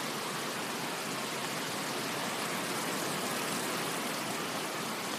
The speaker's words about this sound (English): I'm standing under the canopy of a roof on an outdoor deck. And the rain is pounding down. Doesn't it sound soothing?